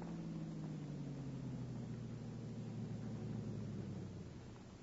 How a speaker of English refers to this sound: Car coming.